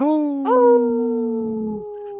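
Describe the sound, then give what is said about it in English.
A person's voice imitates a low wolf howl: one steady, drawn-out note lasting about two seconds, stepping slightly up in pitch near the start and then holding level before it stops. “I tried to a low howl. I went ho.”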